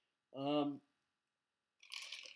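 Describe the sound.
Someone chews crushed ice: a brief voiced sound comes first, then a burst of bright, gritty crunching at moderate loudness for about half a second.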